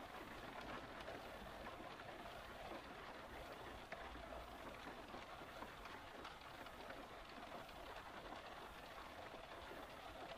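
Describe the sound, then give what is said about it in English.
Steady, dense rain patters on a car roof, a continuous hiss of countless droplets that holds an even loudness throughout, with no voices. “The rain pitter-pattering on the roof.”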